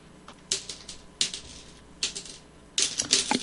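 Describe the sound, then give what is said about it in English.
A stacked tower of small hard objects wobbles and nearly topples, giving off four bursts of bright clattering and rattling, the last one longer and busier, with quiet pauses between. “Oh no, the tower is falling. Being destroyed.”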